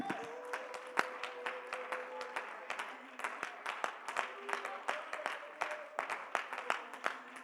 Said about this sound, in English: Let's clap our hands again to Jesus.